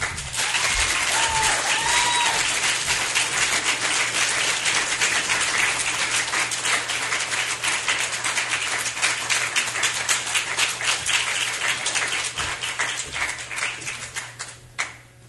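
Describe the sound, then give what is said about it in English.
A sustained burst of audience applause for performers after a performance, dense and steady for most of its length before gradually thinning out, with a few louder individual claps near the end. “Can we have another round of applause for all of our performers?”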